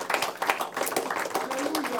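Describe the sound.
An audience gives a clap offering to the word of the Lord, clapping together in a dense, steady burst of overlapping claps that stays fairly loud for about two seconds, with a murmur of voices mixed in.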